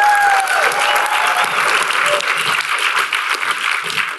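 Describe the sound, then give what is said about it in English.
Sustained audience applause fills the whole stretch, a dense, steady wash of many hands clapping at a loud, even level, with a few faint whistles and cheers rising early on. “Adam Stott, give him a big round of applause.”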